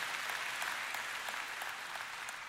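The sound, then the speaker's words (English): Steady applause from an audience, a dense wash of many hands clapping at an even level throughout, with faint individual claps popping out now and then. “So you say, yeah, that's a great place to clap because I know moms believe that.”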